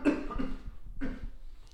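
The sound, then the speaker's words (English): Two harsh coughs about a second apart, each a sudden rough burst that trails off quickly, with no talking around them. “I'm sorry, I'm dealing with a bit of a cough, so my apologies.”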